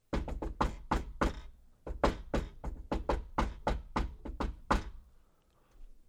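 A rapid, rhythmic secret knock pattern made very low on the back door of the Rusty Tankard, with about fifteen crisp raps grouped into a lively beat with a brief pause midway, then quiet.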